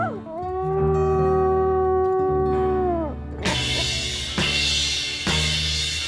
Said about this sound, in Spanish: De hecho, la grabación de esta canción está hecha con armónicas y sonidos reales de perros.